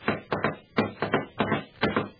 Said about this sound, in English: I rapped on the door marked Adam Flynn, and a deep voice called, Jerry Browning? Well, walk right in.